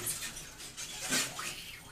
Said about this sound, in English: It's some squeaky waters. Squeaky waters. They're probably all screaming. It's actually them communicating as they're grabbing that one out.